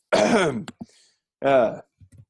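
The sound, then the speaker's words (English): Two exaggerated, voiced cough sounds, fairly loud, separated by a short pause. A voice is clearly acting out the coughs rather than coughing naturally, with faint breathy noises after each. “But cough.”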